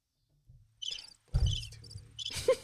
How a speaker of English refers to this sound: Give her some crickets.